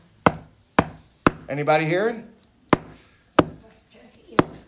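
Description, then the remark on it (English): Three sharp knocks on a door in a steady rhythm, a brief spoken call, then three more evenly spaced knocks, loud and hollow. “I stand at the door.”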